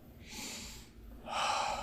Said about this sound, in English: But deep breathing. So people say, stand up, close your eyes, and take 10 deep breaths.